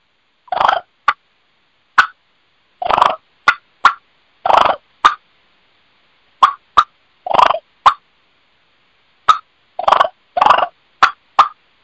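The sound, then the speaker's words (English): An Eastern or Osceola wild turkey hen gives a series of deep, bassy, raspy clucks, some short and sharp, others longer and grating, spaced irregularly over about twelve seconds against a silent background. “you're going to hear the bassier cluck. And this, again, is going to be Easterns and Osceolas.”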